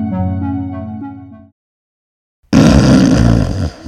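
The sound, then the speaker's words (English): Loud, rumbling snoring like a chainsaw in the night: a low, buzzing drawn-out snore, a second of silence, then a harsher, raspier snore that rattles on just as loudly. “snores away like a chainsaw in the night”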